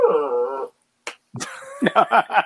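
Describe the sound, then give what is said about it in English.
A dog whines with a drawn-out, wavering whimper, then lets out a quick series of short, sharp yips, with a brief click between them. “Shut that dog up, badass.”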